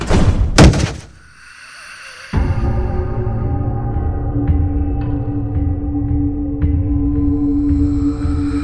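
A heavy oak door at Ravenwood slams hard in a single loud, booming impact as a body collides with its front. After a brief lull, a steady low droning tone fades in and continues to the end.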